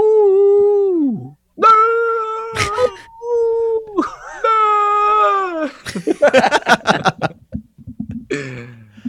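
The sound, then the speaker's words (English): A female dog that doesn't know how to bark lets out a series of long, high, wavering screams and yowls, with a few sharp broken cries in between, loud, no ordinary barks at all. “She can't, she doesn't know how to bark. The Wolves, so she just screams.”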